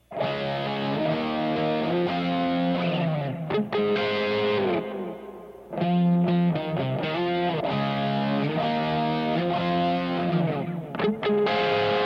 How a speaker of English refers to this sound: But now with that rock guitar, with that fuzz and a bit of distortion, it makes this.